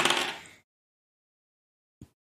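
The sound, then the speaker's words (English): Dice rattle and tumble in a quick burst of clicking that fades out within half a second, then after a pause a single soft clack sounds. No one speaks. “Do I need to roll separately for Androdite? Let's say yes.”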